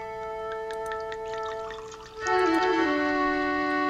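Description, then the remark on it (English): A green liquid pours into a glass over a steady humming tone, the pour growing louder and fuller about halfway through with a faintly rising gurgle, continuous. “Classic scene there with Scotty and Tomar going at it, and Scotty just not knowing what he was pouring out there, thinking.”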